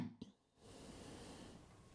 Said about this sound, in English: Whew. Sorry about that, guys. We'll have to cut it out. Your sneeze is so loud, it will hurt people's ears.